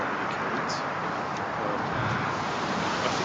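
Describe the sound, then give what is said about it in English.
Steady, roaring wind on the ocean during a sudden storm, with a broad rushing wash like surf, loud and unbroken across the whole stretch, with no voices and no distinct breaks or gusts. “It's very windy in the ocean.”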